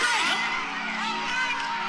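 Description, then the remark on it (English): A crowd at a show roars and cheers in a dense, continuous wall of voices, with whoops and yells rising above the steady loud din throughout the short burst. “Listen to the crowd roar.”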